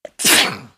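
A single loud sneeze from a mother: a short sharp intake followed by a bright, noisy burst that trails off quickly, with no talking.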